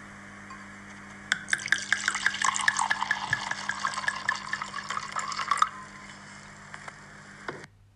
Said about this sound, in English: Wine being poured. And obviously there's 2 sounds, isn't there? There's the potential glugging. Yeah. And then there's the liquid hitting a bowl. I'm presuming the liquid hitting the bowl is genuine. And we're talking specifically about the glugging.